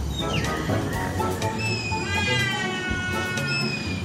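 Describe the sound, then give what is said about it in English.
A trumpeter hornbill lets out drawn-out, nasal wailing calls that sound remarkably like a cat's meow, with a slightly bleating, horn-like quality like a plastic party horn, loud over a dense background of other birds. “However, the trumpeter hornbill has a rather convincing cat.”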